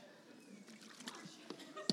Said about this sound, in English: Just going to get a little swig of water, as is classic for my teachings.